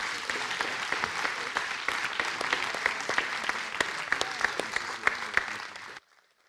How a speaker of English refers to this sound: and let's send them off again with a loud applause.